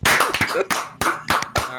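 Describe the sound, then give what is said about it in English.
Several sharp, loud hand claps land in quick, slightly uneven succession after a countdown, clapped for syncing audio recordings. It sounds like a few people clapping nearly together, each a crisp smack with a brief ringing tail. “3, 2, 1, clap.”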